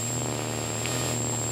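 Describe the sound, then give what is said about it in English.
Raw radio transmission static coming out of an antenna, played into a control voltage panner: a steady, dense hiss layered with a low droning hum and a thin, high whine, continuous and unchanging, with no voices. “This is just a raw transmission coming out of an antenna.”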